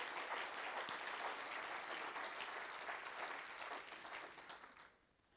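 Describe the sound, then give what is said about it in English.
An audience claps hands to the Messiah in a steady, dense burst of applause, loud and continuous for about five seconds before tapering off quickly at the end. “Oh, I wish somebody clap your hands to the Messiah.”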